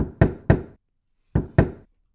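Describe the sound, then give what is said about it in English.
Knocking on the door of a giant longhouse: two quick pairs of solid raps separated by a brief pause, fairly loud, with no voices. “Yes, it was a knock on the door.”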